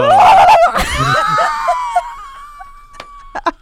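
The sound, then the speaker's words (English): A person lets out a loud, high-pitched scream that wavers and slowly fades over a few seconds, followed by a couple of short, breathy laugh-like bursts. “I'm just like screaming.”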